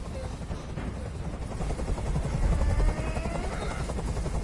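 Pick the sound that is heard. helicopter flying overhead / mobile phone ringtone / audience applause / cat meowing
helicopter flying overhead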